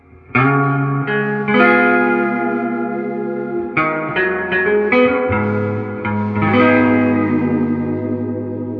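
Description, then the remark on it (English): Electric guitar played through a Deluxe Reverb amp, strumming a series of ringing chords with clear attacks. The sustained notes carry a wash of reverb and are loud, with no voices. “Of course, okay, so your big differences here is the body, just the cab size of the deluxe reverb makes it automatically just that much different.”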